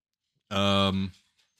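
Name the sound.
dogs making noise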